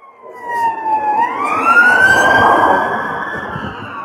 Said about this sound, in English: I'll let this police car go by.